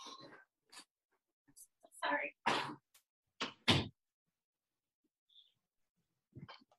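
A door being shut: a few short knocks and scraping thuds in quick succession, with faint whispery breaths and rustling around them, then quiet.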